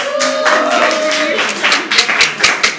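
An audience applauds for a green cup being brought out, a dense wash of clapping with a brief cheer or whoop early on, thinning toward the end into a few separate, sharp claps.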